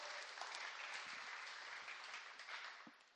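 Steady audience applause fills the room, a dense wash of many hands clapping at an even level throughout, moderately loud and without any voices over it.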